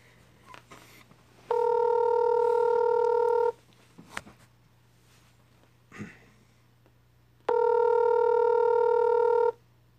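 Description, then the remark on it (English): Telephone call tones: two long, steady electronic buzzes, each about two seconds, separated by a pause with faint clicks and soft noises, no talking. “That audio you just heard is to make it seem like we're social distancing.”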